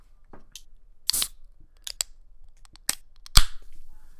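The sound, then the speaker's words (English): Cans of light, crisp beer crack open in a series of sharp, snappy pops with brief fizzy hisses, spaced irregularly over a few seconds; the final crack is the loudest. No one speaks. “I think if you're down, I'm down, if you're down, let's crack these boys open.”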